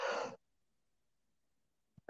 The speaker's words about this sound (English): Excuse me, that's an off video sneeze.